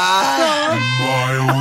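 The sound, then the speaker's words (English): A groan sound effect from a crowd, several low voices moaning together in a sustained, slightly falling drawl that lasts over a second and a half, fairly loud and without other talk. “Hit him with the groan.”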